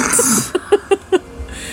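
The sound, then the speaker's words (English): A fart: four short, low, buzzy puffs in a quick, evenly spaced series, following a brief breathy hiss, with no talking. “I push Drake slightly into the fart.”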